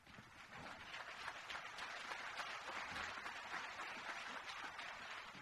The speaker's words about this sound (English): I noted where that applause started from.